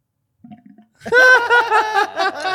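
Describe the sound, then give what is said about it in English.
Water bubbling in a glass bong: a faint brief burble, then a loud, wavering gurgle with a rough, throaty tone that rolls on for about a second and a half. “That's a good bloop. Does it do that every hit?”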